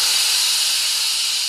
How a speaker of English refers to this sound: The best part is, when a fuel cell creates electricity, it doesn't create pollution. It only gives off water, which comes out as steam, 蒸汽.